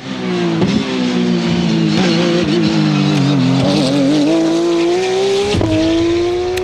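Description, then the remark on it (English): Race cars roar past at high speed with sustained engine whine rising and falling, punctuated by sharp tire squeals and brief bursts, loud and continuous with no talking. “I love that sound effect. That's probably one of the either Sebring or it's Daytona.”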